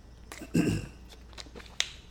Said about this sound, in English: Think about that while I take a sip here.